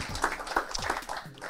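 An audience gives a round of applause for an event's organizer and his team at the beginning of the day, a steady, fairly soft wash of many hands clapping, with a few low voices murmuring underneath.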